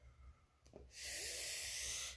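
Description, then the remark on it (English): A deep, drawn-out inhale of smoke, a steady breathy hiss that starts after a short soft intake and holds strong for over a second. “Like inhale, just take it.”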